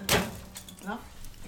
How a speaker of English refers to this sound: Would you be frightfully kind and put another log on? Thanks so much.